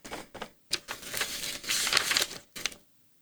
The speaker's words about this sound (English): He pulls out a piece of paper and like a pen and paper. Actual paper and pen and starts writing down.